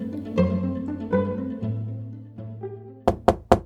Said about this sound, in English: Believe me, I will keep on knocking till you hear me out.